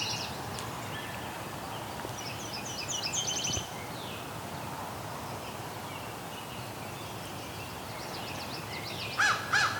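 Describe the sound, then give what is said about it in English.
A crow caws a few times, harsh rasping calls rising above a steady outdoor hiss, with smaller birds chirping and trilling faintly around it. “We got a crow.”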